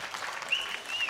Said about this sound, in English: So somebody applaud the Lord for our tent revival again.